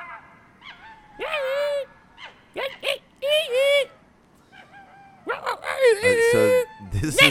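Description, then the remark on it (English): Monkeys call in a string of shrill, wavering hoots and whoops, coming in irregular loud bursts with rising and falling pitch, growing denser and overlapping toward the end. “These are now monkeys, I believe.”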